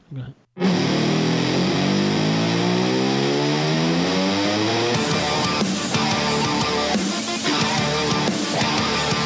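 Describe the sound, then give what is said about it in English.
A loud engine revs up with a steadily rising pitch for several seconds, then a driving, rhythmic car-themed music intro kicks in and carries on at full volume. “We're going to bring in our car music intro.”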